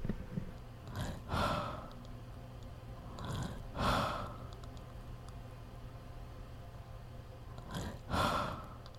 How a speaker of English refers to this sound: I'm just sitting down next to you with my microphone. I'm just going to record your breathing.